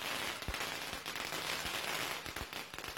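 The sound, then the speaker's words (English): A string of firecrackers goes off in the street, crackling in a dense, continuous rattle, punctuated by a handful of sharper, heavier pops every half second or so. No one speaks. “If you're listening to our podcast, you're just hearing the pop sounds.”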